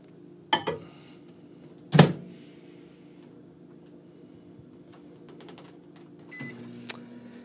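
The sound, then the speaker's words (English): A microwave oven starts up with a couple of sharp clunks from the door and buttons, then settles into a steady low mechanical hum as it heats apple cider in a mug, with a faint tone shift near the end. “I'm going to use the microwave for a quick heat up.”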